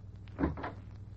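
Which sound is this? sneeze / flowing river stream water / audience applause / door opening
door opening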